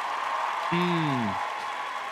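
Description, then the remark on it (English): Steady applause hisses throughout, with a single falling cheer rising briefly above it near the middle; a short, moderately loud burst of crowd noise as the game segment Let's Get Deep is announced. “Crowd loves Let's Go Deep.”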